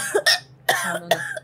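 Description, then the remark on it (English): A voice imitates coughing: a quick pair of raspy coughs, then two more harsh, breathy bursts spaced about half a second apart, fairly loud with no other talk. “As you watch all of the individuals, the prisoners, their skin begins to spot little black mold spots along their skin, and they begin to cough.”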